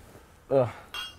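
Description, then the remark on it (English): A brief voice is followed by a single bright clink of glasses touching in a toast, short, with a faint shimmering ring as it fades. “So, cheers.”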